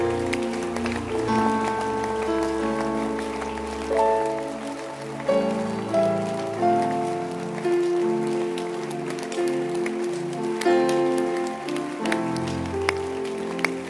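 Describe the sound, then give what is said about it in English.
An audience applauding at the preacher's call in a dense patter of many clapping hands that weakens and wanes in intensity, with sustained tonal notes running underneath and no clear speech. “The hand clap is weakening and waning in its intensity.”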